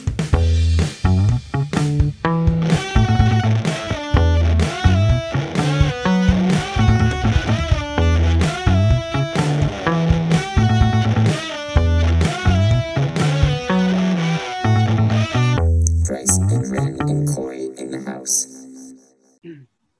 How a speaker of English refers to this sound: Bryce and Randy learned some electric guitar.